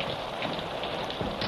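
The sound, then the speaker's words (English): Steady rain falls continuously, a dense hiss of drops spread evenly across the whole moment with no voices or breaks, moderately loud. “I'm not going to trail clear up there till this rain clears up.”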